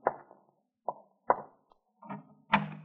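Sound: french door being opened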